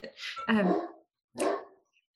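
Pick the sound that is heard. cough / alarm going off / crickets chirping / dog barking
dog barking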